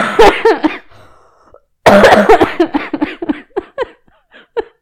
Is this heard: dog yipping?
no